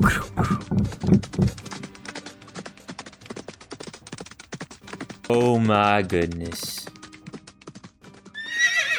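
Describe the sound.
A voice exclaims briefly, then hooves clip-clop in a steady, brisk rhythm. A loud horse whinny rises and falls midway, and a second neigh starts near the end.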